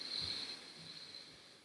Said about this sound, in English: Breathing in through your nose